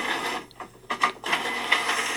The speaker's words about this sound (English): Printer. Printer. Hey, yay. Well done.